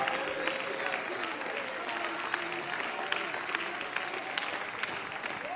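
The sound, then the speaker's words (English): An audience claps hands steadily, a dense, continuous patter of many hands at an even loudness throughout, with a faint murmur of voices underneath. “Would you put your hands together?”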